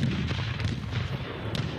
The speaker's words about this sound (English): The mob fired the cannons at the hotel and burned the house where the Free State governor lived.